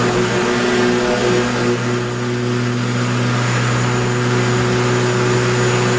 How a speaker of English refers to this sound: All right, what was that? That's right. It was a lawnmower. Yeah. It's a lawnmower.